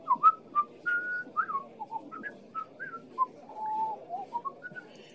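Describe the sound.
A person whistles aimlessly, a wandering string of short, breathy notes that rise and fall without any recognizable tune, steady for several seconds, with no one speaking.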